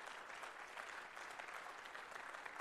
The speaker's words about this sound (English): Come on, give a clap offering to the Lord God.